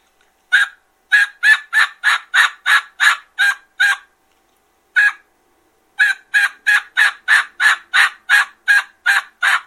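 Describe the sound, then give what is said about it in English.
A rapid run of short, raspy turkey yelps made by panting on a diaphragm mouth call, a steady string of evenly spaced notes, a brief pause with one lone yelp, then another fast series. No talking. “That's why you see the guys that are true diaphragm panters.”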